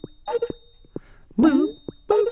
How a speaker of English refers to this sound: Who designed the Skype noise? I don't know. That's what I want to know. I don't like that ring.